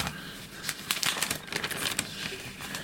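Crisp rustling of newspaper pages being shuffled and handled, with a quick run of papery crackles and flaps that keeps going throughout, no voices present.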